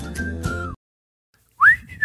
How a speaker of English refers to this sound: Oh, anyway, I just can't get that whistle out of my mind. I'm in Mayberry. Mayberry, RFD. There you go. Andy Griffith.